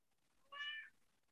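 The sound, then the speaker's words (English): A single short cat meow, clear, rising and falling in pitch over about half a second against a quiet background with no talking. “My cat sure. apparently does.”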